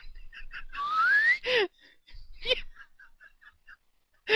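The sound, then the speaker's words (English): A person whistles a single upward-sliding glide in imitation of a slide whistle, lasting about half a second, surrounded by short breathy chirps and giggly vocal bursts. “Like a slide whistle went off.”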